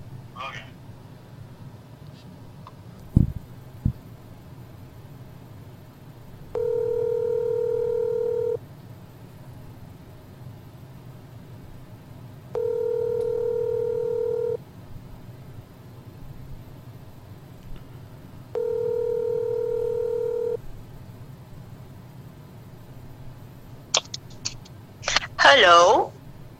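A telephone ringback tone sounds three times while a phone call is being placed, each steady two-second tone separated by long pauses, over a low background rumble, with a click early on and a brief bright noise at the end.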